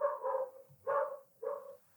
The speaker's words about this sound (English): The dogs of Bushwick are barking.